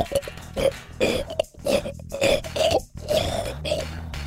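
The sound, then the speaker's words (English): A human voice imitates an elephant seal with a string of deep, gurgling, belching grunts, roughly seven rough bursts in steady rhythm, loud and throaty, ending in a longer drawn-out rumble. “Just sitting there, looking at the seals, sleeping, making weird noises.”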